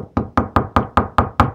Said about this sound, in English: Knock on wood.